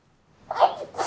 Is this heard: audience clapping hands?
no